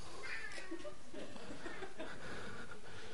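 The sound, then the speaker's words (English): A cat meows several times in a row, drawn-out, wavering cries at moderate volume with a faint background hiss and no talking. “We have a guard cat.”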